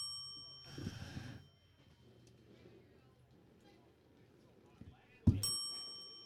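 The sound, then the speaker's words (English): A bell is struck once near the end with a sharp, loud ring that lingers and fades, over a low background murmur; an earlier brief, noisy clatter is also heard. “Back to the bell.”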